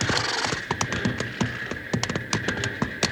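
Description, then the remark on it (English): A steam train engine snorts and chuffs in quick, uneven bursts over a low throbbing rumble, with a steady high-pitched hiss or whine running underneath throughout. “He doesn't like that train snorting at him”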